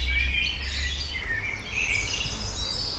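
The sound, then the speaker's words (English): Birds chirping and singing continuously, several overlapping high trills and tweets over a steady outdoor hum, with no voices present. “There are birds chirping.”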